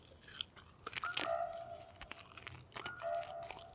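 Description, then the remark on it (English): Someone crunches and chews food, with a steady run of crisp, crackly bites and mouth noises for a few seconds, fairly loud and with no talking. “Mmm, yes, good food, good food.”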